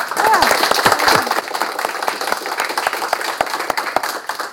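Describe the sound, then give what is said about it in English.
An audience breaks into a round of applause, many hands clapping in a dense, steady patter that stays fairly loud throughout and eases slightly toward the end, with a few voices calling out early on. “I'd ask everyone in the room, just give a quick round of applause if you could.”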